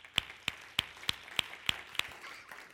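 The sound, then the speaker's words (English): An audience at a worship service claps hands together in unison when asked to clap along: seven sharp, crisp claps in a steady, fairly quick rhythm, then the clapping stops and only a faint murmur of the crowd remains. “Clap your hands.”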